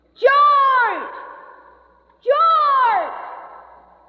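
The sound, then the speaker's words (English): A voice shouts a single name twice, about two seconds apart, each call ringing out and trailing off in a long hollow echo that fades slowly, as if inside a cave. “How can there be an echo when there's no cave anymore?”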